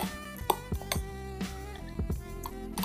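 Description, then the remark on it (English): A spoon clinks and scrapes against a glass several times in an irregular rhythm, fairly quiet, with small clattering taps as chocolate chips are scooped out of a milk drink in the glass. “So I'm using a spoon to scoop up the chocolate chips I poured in my milk drink here.”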